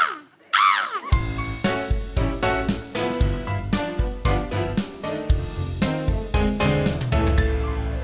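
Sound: voice imitating bird calls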